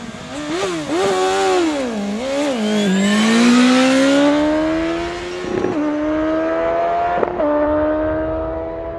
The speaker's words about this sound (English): Did you hear that? There were two roadsters. One was a 165 horsepower BMW S1000R that revs to around 11,000 with an estimated top speed of around 260 kilometers an hour.